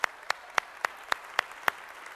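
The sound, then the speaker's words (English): Seven sharp hand claps in a church, applauding people attending for the first time or returning, in an even, steady rhythm, about three or four per second, crisp and bright, with no voices and quiet background between them. “if this is your first time to church or first time back at church, hey, can we applaud that? Can we applaud that for those people?”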